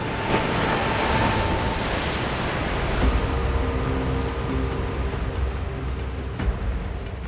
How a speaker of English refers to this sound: Not long after, Captain Duddleston heard the horrific sound of a third wave as it crashed over the ship. The Waldo had been struck by one of Lake Superior's notorious rogue waves.